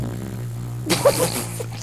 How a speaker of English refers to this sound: That's what the horn in Inception is. It's not. It's a fart. Right. It's a dog. It's a fart. It's a fart. It's a dog fart.